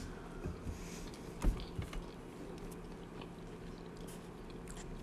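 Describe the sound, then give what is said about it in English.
Chewing of air-fried chicken bites with soft, wet mouth noises and a few sharper crunchy clicks, quiet overall against a low steady background hum, no talking. “I'm sorry, let me just finish chewing here.”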